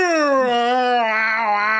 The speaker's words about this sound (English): Do you like when huskies scream for no reason? What's that? Husky dogs, they just are like, what are they? Just always, yeah.